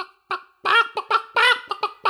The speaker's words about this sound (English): There's a bloody chicken in here.